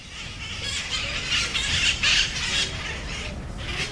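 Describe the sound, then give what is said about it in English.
A flock of the wild parrots of Telegraph Hill squawks continuously, harsh overlapping calls rising and falling in bursts, loud, with no speech. “Mark Bittner is now working full-time on a book and movie about the wild parrots of Telegraph Hill.”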